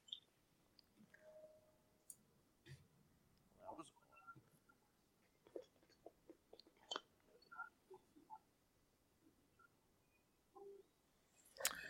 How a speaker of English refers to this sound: Bless you. Oh, yeah. Man, I sneezed all over this fucking thing.